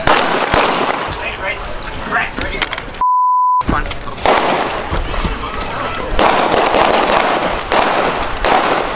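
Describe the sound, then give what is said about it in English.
A rapid string of sharp gunshots fired at a memorial in Minneapolis marking a year since George Floyd's murder cracks out over a noisy outdoor crowd, captured by news crews, with people shouting throughout and a single steady bleep tone cutting in briefly partway through. “Overseas now, multiple gunshots were fired at a memorial in Minneapolis to mark a year since the murder of George Floyd.”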